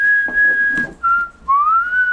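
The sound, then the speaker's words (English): Someone whistles a short song melody: a sustained clear note, a dip to a lower pitch, then a rising, wavering note, with faint breathy background noise. “You whistle.”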